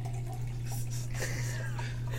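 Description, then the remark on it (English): Running water pours steadily from a tap into a water bottle being filled, a continuous splashing rush with a low steady hum underneath, moderately loud. “filling up his water bottle.”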